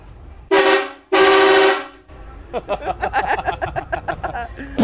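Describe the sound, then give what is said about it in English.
Two very loud, blaring Toyota Camry car horn honks, a short one followed by a longer sustained blast, then people talking and laughing. “Honking the Camry.”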